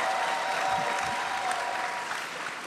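A crowd applauds steadily, a dense wash of many hands clapping at an even, fairly loud level that tapers slightly toward the end.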